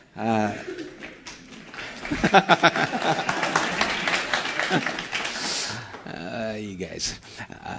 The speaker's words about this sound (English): You're a clapping bunch, aren't you?